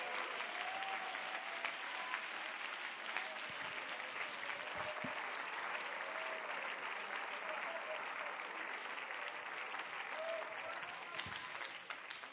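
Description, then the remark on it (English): A large church audience claps steadily and loudly in praise to the Lord throughout, with scattered voices shouting and cheering over the dense, continuous applause. “Somebody clap your hands unto the Lord and give him a mighty shout of praise.”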